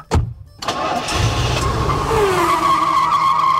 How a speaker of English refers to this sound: Oops, I started the car early.